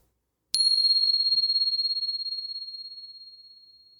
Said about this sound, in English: And here comes the bell.